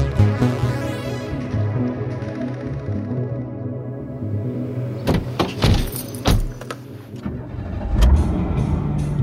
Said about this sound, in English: What's wrong with your car? It sounds bad.